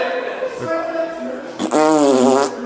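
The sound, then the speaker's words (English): A voice imitates a fart in a public bathroom with drawn-out buzzing, sputtering raspberry noises, rising into a louder wobbling burst near the end, fairly loud. “Fake farts in the bathroom.”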